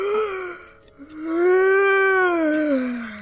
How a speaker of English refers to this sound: You did it, …! You yawned!